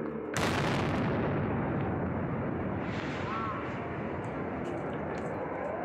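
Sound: bomb explosion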